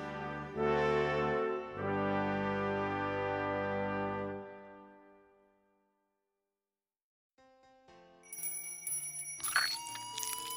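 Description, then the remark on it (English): A bell rings twice in quick succession, loud, its rich tone fading out over a few seconds. After a short silence, fainter, higher chiming tones follow. “did you hear that bell? It's official. I'm an angel now.”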